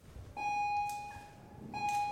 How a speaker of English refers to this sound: Then the bell goes off. It's time to change classes.